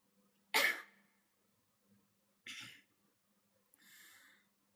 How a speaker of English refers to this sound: coughed before explaining.